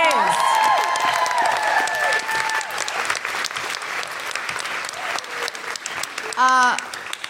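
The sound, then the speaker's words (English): A crowd applauds steadily and loudly throughout, with whoops and cheering voices rising over the clapping at the start and a single high whoop near the end. “And can I just have a huge cheer”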